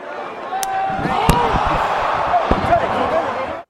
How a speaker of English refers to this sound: Oh, the big slap there from The Rock. He did not like Cody Rhodes going after the family, because you're talking to Roman, you're talking to me when you talk about the bloodline and the family.